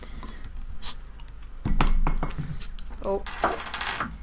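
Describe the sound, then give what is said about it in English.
A bottle of Oud Bruin beer being cracked open: a brief hiss, some glassy clinks and rattles, then a longer fizzing hiss near the end, with a short exclaimed word from a voice. “Should we crack this bad boy?”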